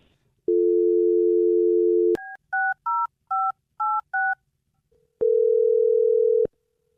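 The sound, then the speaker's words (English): A steady telephone dial tone gives way to a quick run of six keypad touch-tone beeps as a phone number is dialed, followed by a single sustained ringing tone, all clear with no talking. “I'm dialing the phone number right now.”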